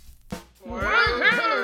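A cat lets out a long, wavering meow, its pitch rising and falling over about a second, just after a short soft thump.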